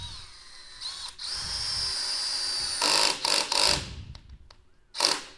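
A power drill drives a screw about an inch into Douglas fir 2x4 lumber, fastening luan flush to its end, in a few whirring bursts, the motor pitch steady and loud, then a final short burst after brief clicks and pauses.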